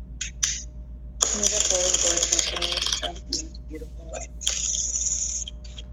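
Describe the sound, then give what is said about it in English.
Tarot cards being shuffled: a longer burst of crisp, papery riffling, a few scattered taps and flicks, then a second shorter flurry of shuffling over a low, steady hum. “And in terms of shuffling the cards, again, it's all intuitive. I stop when I feel called to, or when cards fall out.”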